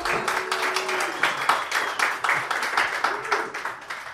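An audience applauds steadily for about four seconds to welcome a guest, many hands clapping in a dense, rapid patter, with a faint voice or two murmuring underneath.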